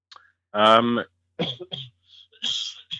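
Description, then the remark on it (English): A single loud, throaty cough with a strong voiced rasp at the end of an interview, followed by a few shorter, rougher bursts and breathy sounds. “Sorry about that last minute cough, but I'm going to end the interview really right there.”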